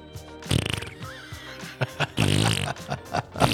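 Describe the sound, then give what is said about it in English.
Two buzzy, sputtering fart sounds, a short rattling one followed by a longer, louder blast, with a few quick pops and thumps scattered between them. “The fart sounds lame.”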